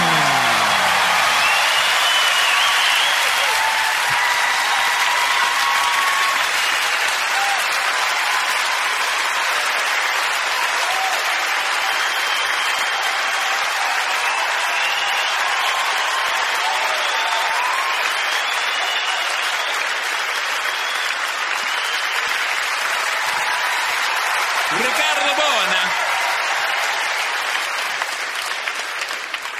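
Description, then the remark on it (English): A crowd claps steadily in a long, dense round of applause, loud and sustained throughout with a few faint whoops rising over it, no speech standing out. “I think that, how about a big round of applause for Richard?”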